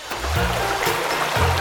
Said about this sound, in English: When you flush the toilet, the water, poop, and pee, what we call sewage, goes down a pipe and flows underground to join other pipes with even more sewage, which means more poop and pee.